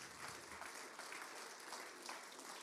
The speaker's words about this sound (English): We clap our hands to the Lord. Praise Him.